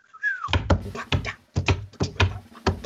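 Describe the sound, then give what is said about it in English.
A voice imitates a man in a bar blowing a whistle: one short, curving whistle tone, then a quick series of sharp, breathy blasts in an uneven rhythm, fairly loud. “And he had brought a whistle with him. He's going.”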